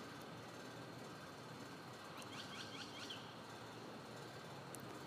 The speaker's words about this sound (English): Be quiet, birds. I'm trying to listen to the air conditioner.